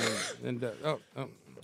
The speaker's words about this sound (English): there you go. Good timing, eh? Sounds like you got that bong cough under control.